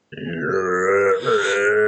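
A horde of zombies groans and moans in a loud, sustained chorus of overlapping guttural voices, with one brief dip before the moaning swells again.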